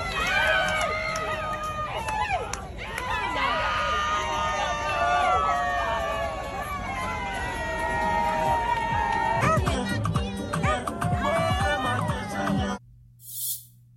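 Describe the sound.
A loud crowd of adults cheers and applauds a child almost continuously, voices shouting over one another in a dense, echoing din that cuts off abruptly near the end.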